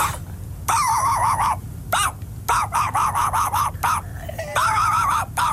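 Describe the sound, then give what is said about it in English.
A person's voice imitates a dog barking, producing a series of loud, harsh bark-like yelps in quick irregular bursts over a low background rumble. “I'm going to go with a real dog. That was me.”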